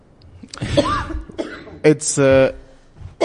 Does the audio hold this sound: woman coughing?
yes